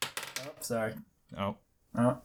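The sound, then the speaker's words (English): A quick cluster of clattering knocks as objects are knocked off a desk by Schnarfield walking around, followed by three separate ringing, metallic clinks with short pauses between them, like small hard items landing one after another. “He's knocking stuff off the desk again.”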